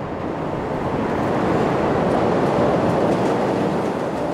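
An elevated train rumbles steadily along the tracks, a loud, dense roar of wheels and rail noise that holds constant throughout, with no voices.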